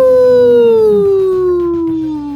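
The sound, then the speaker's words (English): A person lets out a loud, sustained wolf-like howl, a single long note sliding slowly downward in pitch, with no other sounds around it. “That was a good howl, man.”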